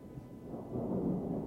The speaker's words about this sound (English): Throw in the thunderstorm like I just dropped a bomb.